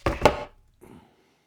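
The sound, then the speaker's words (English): Darts thrown at a dartboard miss it and hit a wall, sticking in it, with two sharp, solid thuds in quick succession, followed a moment later by a softer third knock. No voices are heard. “because the other ones are stuck in the wall.”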